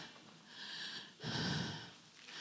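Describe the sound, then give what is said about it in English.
Two amplified breaths into a loud microphone: a softer airy exhale, a brief pause, then a louder, fuller breath with a rough, noisy texture, no talking. “This mic is loud. I like it loud, but you can hear my breathing too.”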